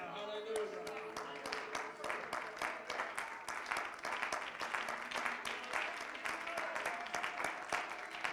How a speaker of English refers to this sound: Let's clap our hands unto God.